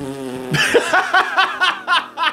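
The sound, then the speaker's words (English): A voice makes a low, buzzing raspberry imitating a fart for about half a second, then breaks into loud, rhythmic bursts of laughter that carry on to the end. “They farted for 8 minutes and then went, sorry.”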